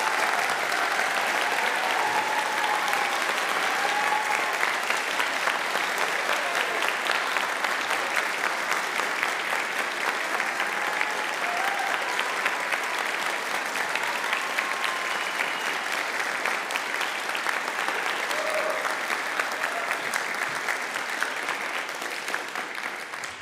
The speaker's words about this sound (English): I'm going to ask my Philharmonic Orchestra to stand up and be appreciated with a round of applause, please. Stand up and be appreciated.